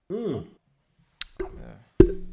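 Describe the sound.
A short voiced sound, then a beer can and a beer bottle clink together in a toast: two sharp knocks about a second apart, each leaving a brief metallic-glassy ring.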